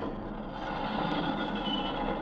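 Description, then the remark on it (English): A train rumbles steadily along the rails, a dense, continuous low roar with a faint high hiss and slight metallic squeal above it, holding an even loudness throughout. “Stop the engine at once”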